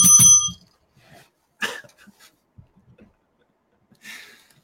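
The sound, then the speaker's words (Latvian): A small bell gives one bright, ringing ding right at the start and fades within about half a second, followed later by a couple of brief, soft rustling noises. “Reku, mums ir zvaniņa mīļotāji.”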